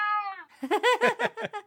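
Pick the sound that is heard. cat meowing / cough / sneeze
cat meowing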